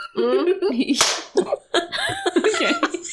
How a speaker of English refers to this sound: That was loud. That was a big one. That was a good one. Clap, yeah.